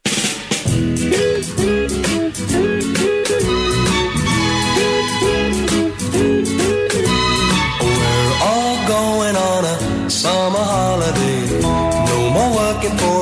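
An upbeat pop song plays at a steady, full volume, with a bright bouncing beat, layered instruments and a melodic line that rises and swoops throughout.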